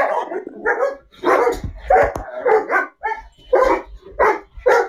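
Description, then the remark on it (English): A dog barks excitedly in a rapid, repeated series of sharp barks, about ten in five seconds, loud, with no talking over it. “Uh-oh, my dog's crazy. My dog's about to go crazy.”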